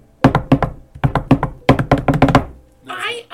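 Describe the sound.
Sharp knocks on a hard surface in three quick rhythmic bursts, the last one longer and faster, followed by a brief snatch of voice at the end.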